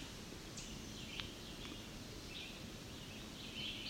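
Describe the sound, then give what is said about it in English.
A few short, sharp ticking calls from a male chestnut-sided warbler, sparse and irregular, set against a steady hiss of outdoor background noise, with faint high chirps drifting in between. “I believe it's our chestnut-sided warbler that's ticking.”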